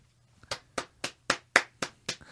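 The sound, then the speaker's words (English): Eight crisp hand claps in a steady, fairly quick rhythm, each one a sharp, bright smack, with no talking and only a low hum underneath. “But we don't just do manual clapping on this podcast.”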